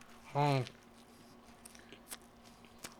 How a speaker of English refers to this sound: You can hear him chew with his lips. This is going to piss a lot of you off. And other ones, you're going to enjoy it. Such a good sandwich.